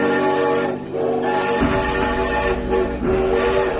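A westbound passenger train runs steadily: a continuous, loud rumble of wheels and engine, with sustained droning tones layered over it. No one speaks.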